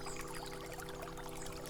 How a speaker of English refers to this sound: Feel the emotion drifting out of your body and flowing away down that river you hear and disappearing off into the distance.